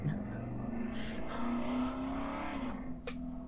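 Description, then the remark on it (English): A motorcycle engine revs outside a window on a very windy day, a steady droning hum that climbs and settles in pitch over a few seconds. “It's motorcycle season.”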